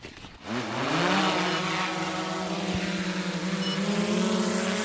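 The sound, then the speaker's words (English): A drone on a test run over an island spins up after a brief pause, its buzzing whine rising in pitch, then holds a loud, steady harmonic drone as it flies about 300 metres toward another high point, where a second controller takes over to land it, with no talking. “He's got a controller too, so he'll take over the drone and land it over there, and then he'll send it back again.”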